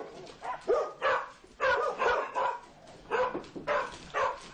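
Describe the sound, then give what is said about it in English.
Dogs waiting at the door bark in a steady, excited stream of short overlapping yaps and woofs, moderately loud, with no talking. “I've told all the dogs he's coming and everyone's waiting at the door for him.”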